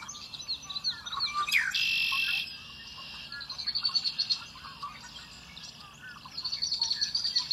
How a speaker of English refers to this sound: I want to register another common but beautiful bird, which is the red-winged blackbird